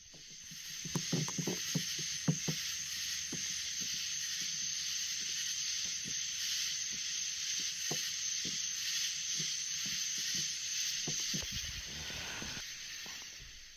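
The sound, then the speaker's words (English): Swamp ambience: a dense, steady high-pitched hiss of insects fills the air, with scattered low knocks, splashes and croaks popping up throughout. No one speaks. “now that was is the sound of a swamp, okay?”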